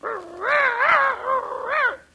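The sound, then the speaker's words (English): A person imitates a dog while playing a dog's part, letting out a drawn-out, wavering run of bark-like vocal sounds that rise and fall several times, loud, with no other talking. “You know, I think we should have got a real dog for this part.”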